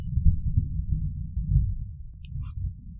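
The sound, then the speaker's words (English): A low, rolling rumble of thunder from a thunderstorm that arrived earlier than forecast swells and fades for about three seconds with no voices, and a brief faint high chirp sounds near the end. “We chose to record today because the rest of the week is supposed to be thunderstorms, but apparently they're here early. If that is left in the recording, we apologize.”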